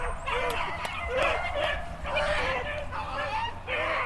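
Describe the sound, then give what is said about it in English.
Beagles on a rabbit during a rabbit hunt on a farm in East Tennessee in February bay in a continuous chorus of overlapping yelps and howling barks outdoors, with several dogs crying out together in excited, uneven bursts. “When they bark and yelp like that, it means that they're on a rabbit.”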